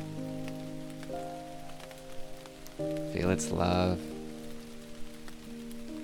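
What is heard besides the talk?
rain falling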